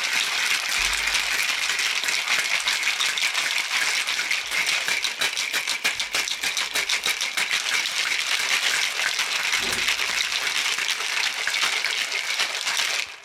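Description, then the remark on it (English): A cocktail shaker rattles hard and steadily for over ten seconds while mixing a spring gin cocktail, ice clattering in a dense, bright, fast rhythm with brief dull thumps, no voices over it. “All right, let's mix this puppy up.”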